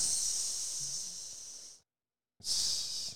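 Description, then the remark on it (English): A person imitates a snake with a long, sharp hiss through the teeth, pauses briefly, then hisses again, steady with no talking. “Snake. A slither snake.”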